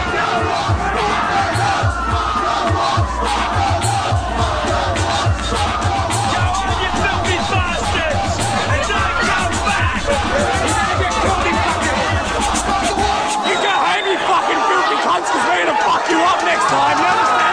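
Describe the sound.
A large crowd of mainly young people shouts and yells at Cronulla Beach in Sydney's south during racial violence, a dense, loud roar of many voices with scattered hoarse cries rising above the constant babble throughout.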